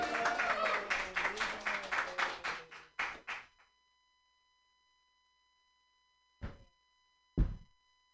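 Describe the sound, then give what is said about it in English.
A burst of audience applause with some cheering voices, rhythmic and fairly loud, fades out after a few seconds; after a pause, two sharp isolated knocks follow. “Clap it up for me.”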